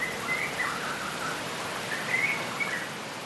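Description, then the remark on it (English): Birds chirping in brief, scattered bursts over a steady, hissing outdoor ambience like wind or light rain. No one speaks. “Wind blowing through the trees, rainfall dripping, insects buzzing, birds chirping.”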